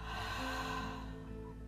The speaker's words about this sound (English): Breathing deeply.